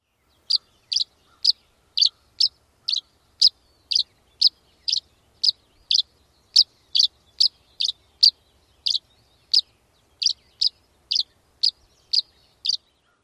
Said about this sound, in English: The tree swallow dawn song is a bit different. It is a series of chirps, sometimes in clusters of two to three. Here is the tree swallow dawn song.